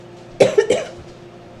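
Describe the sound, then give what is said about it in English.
A quick burst of three dry coughs in close succession, fairly loud, from a person with a tickling in the throat, followed by a faint quiet background with no talking. “I'm getting a tickling in my throat. So I'm sorry about that.”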